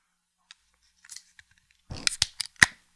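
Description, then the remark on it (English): A few faint clicks, then an overcarbonated, overfilled Amber beer is opened: a short burst of rough fizzing hiss followed by several sharp snapping cracks, the last one loudest. No one speaks. “That was overcarbonated. Overfill.”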